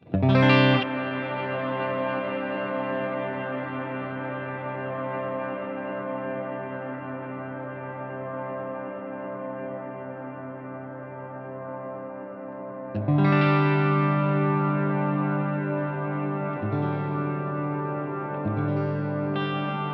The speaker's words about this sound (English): But we'll make it just kind of a droning style reverb. And again, the feedback's at 3. Tone is at noon. Reverb mix is at noon as well.